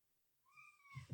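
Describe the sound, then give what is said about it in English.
A single drawn-out meow from Jasper, a baby kitty in a recording studio, fairly quiet, followed at the end by a couple of soft muffled thumps. No one speaks. “We'll just tell him it's our kitty.”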